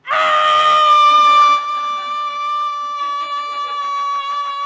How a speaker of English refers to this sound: She walks directly to the other end of the couch and screams at him.